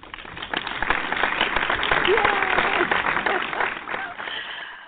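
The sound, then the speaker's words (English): An audience applauds in a dense, steady wash of clapping that swells within the first second and holds, with faint voices and a brief whoop mixed in before it thins slightly at the end. It is a round of applause for vendors who have a smile and a great attitude. “Please, round of applause for all the vendors that have a smile on their face and have a great attitude.”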